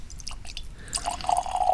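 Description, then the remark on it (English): A few small clinks and clicks, then a small pour of whiskey goes into a glass with a gurgling, rising tone. Moderately loud and brief, with no talking. “And I'll take a small pour.”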